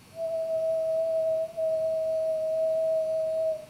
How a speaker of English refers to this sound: And if I attempt to whistle, which I'm not very good at, should see a sinusoidal pattern.